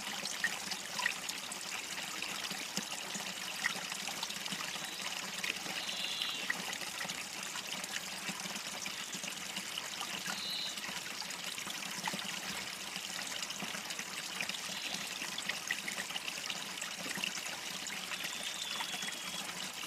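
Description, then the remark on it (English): A creek trickles steadily and continuously, a soft, even babble of flowing water with fine bright splashes, unbroken for the whole stretch, with no voices. “And just stay there at the creek side, laying on the sandy beach, under the pepperwood tree, with a warm breeze blowing across your body.”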